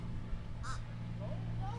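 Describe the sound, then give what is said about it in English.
A bird gives one short, harsh call outdoors, followed by a couple of faint, brief chirps, all fairly quiet over a steady low background hum. “This bird also wants to join the podcast.”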